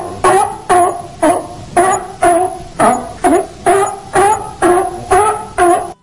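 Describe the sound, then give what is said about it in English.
A sea lion barks over and over in a steady rhythm, about a dozen loud, hoarse, honking calls in quick succession with short gaps between them, no voices present. “I don't have a turkey noise, so we're going to go with a sea lion, which, according to popular folklore, is known as the turkey of the sea.”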